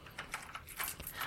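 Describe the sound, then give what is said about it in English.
Keys jangle and clink in a short burst of bright metallic jingles, ending in a few sharper clicks as a lab door is locked. No one speaks. “Erasmus, lock the lab door and douse the lights.”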